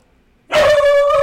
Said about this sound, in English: my dog wants to get into the podcast here. And the show. She'll come down, hopefully. Or maybe not.